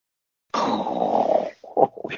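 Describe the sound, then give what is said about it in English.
A voice does a mock snore after a bad joke: one long, loud, rasping snort lasting about a second, followed by a few short, choppy vocal bursts. “Snore out.”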